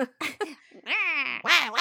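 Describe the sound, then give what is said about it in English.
A voice imitates a nasal wah-wah animal call: a few short choppy bursts, then a long drawn-out wail and a final bending wah, loud and clear with no other talking. “And then a wah-wah call.”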